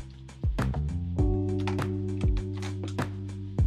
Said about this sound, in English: All right, I'm going to take some water. There's some water.